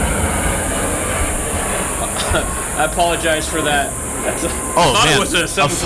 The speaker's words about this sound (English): A fighter jet just flew right over. Some type of F-16 just flew over in honor of the 4th of July.